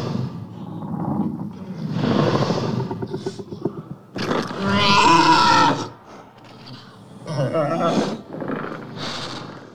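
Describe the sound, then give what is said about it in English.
Godzilla and Kong trade roars in a shouting match during the Hong Kong sequence of a film: a rumbling, growling bellow builds, then a loud screeching roar erupts, followed by further shorter roars, all harsh and powerful with no talking. “And actually, I think my favorite moment of the movie, which is just a shouting match between both Titans.”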